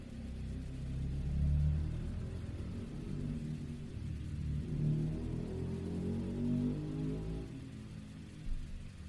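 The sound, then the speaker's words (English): A motorbike roars past with a deep, throaty engine rumble that swells, dips and swells again over several seconds as it revs. No one speaks. “That may have been the loudest motorbike I've ever heard.”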